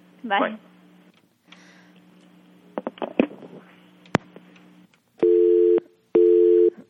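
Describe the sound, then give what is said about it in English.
Two loud, steady electronic phone tones, each lasting about half a second, follow a stretch of faint clicks, a sharp tick and handset rustling, as someone plays with the telephone. “Okay, Brian's playing with the phone now.”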